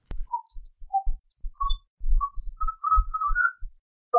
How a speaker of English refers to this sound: this is simply whistling that was captured on the bridge